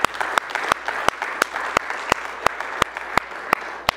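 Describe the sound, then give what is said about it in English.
An audience claps their hands for Jesus, a steady rhythmic beat of sharp, loud claps about three per second over a dense wash of scattered applause, with no one speaking. “Come on and give Jesus a hand clap if you would, please.”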